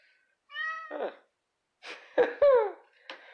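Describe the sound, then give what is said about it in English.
A cat named Bucky meows several times, a short vocal chirp first, then two louder, drawn-out meows with falling pitch, each separated by brief pauses, with no talking over them. “See? Bucky agrees with me.”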